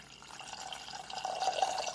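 A cup of water pours steadily into a pot holding a cup of granulated sugar, for making simple syrup, for about two seconds, a splashy gurgle whose pitch creeps upward as the pot fills, with no talking.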